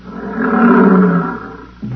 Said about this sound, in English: Oh, here come the lions.